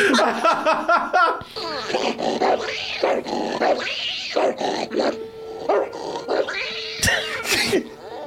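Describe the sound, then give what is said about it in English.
A man's voice imitates a dog, barking at himself with loud, ragged barks and throaty growls in uneven, strained bursts, with brief snarling howls in between. “Barking at”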